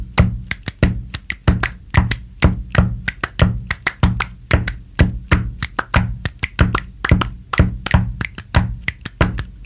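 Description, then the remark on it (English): A steady rhythmic beat played by hand: low thumps on a desk like a kick drum, layered with sharp claps and finger snaps in a repeating groove. No one speaks. “I'm going to do the kick drum on the desk and a little bit of clapping and snapping to illustrate the beat”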